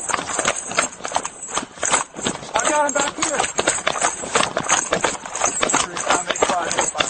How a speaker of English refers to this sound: This is them running because they hear the boy's voice.